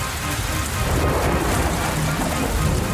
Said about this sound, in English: The storm is picking up and we should get back, but we have to check the trunk.